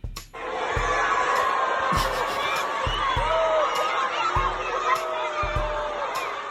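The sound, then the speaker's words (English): A large crowd of middle school and high school students near Baltimore booing First Lady Melania Trump on stage during her speech, in a steady, loud, continuous roar, mixed with scattered shouts and chatter, punctuated by a few sharp thumps. “First Lady Melania Trump got booed on stage yesterday by an audience of middle schoolers and high schoolers near Baltimore.”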